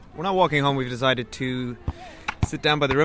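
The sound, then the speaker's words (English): A basketball bounces twice, two sharp, low thumps about half a second apart, landing in a brief pause while people talk before and after, outdoors by a busy river on a nice spring day. “There goes a basketball.”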